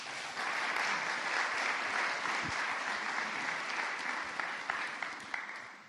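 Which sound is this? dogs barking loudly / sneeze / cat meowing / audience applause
audience applause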